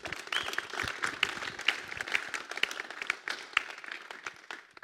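Audience applause welcomes a person coming up to share their story before being baptized, a dense wash of many hands clapping at a steady level throughout, with scattered sharper claps poking out before it begins to thin near the end.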